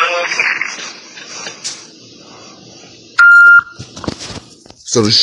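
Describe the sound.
A single loud, steady electronic beep on a phone line while on hold, lasting about half a second, with muffled background talking and line noise before and after.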